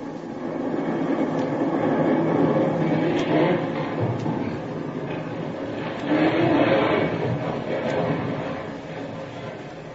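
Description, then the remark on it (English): A sustained, heavy rumble from the reverberations of a tremendous explosion, as a castle blows up, rolls on for the whole stretch. It swells twice with no sharp blast at the start, a dense low roar with faint crackles above it. “the very earth trembles with the force of a tremendous explosion whose reverberations can still be heard.”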